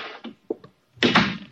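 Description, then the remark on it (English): The door of a room is pushed shut, with a short scrape and a light click before a solid, fairly loud thump that rings out briefly. No one speaks. “I said close the door.”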